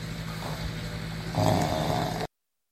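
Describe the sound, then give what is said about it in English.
A single drawn-out, raspy snoring noise made by a voice, rising suddenly over a steady low hum and lasting about a second before cutting off abruptly. “Episode 4, we'll call it Snore.”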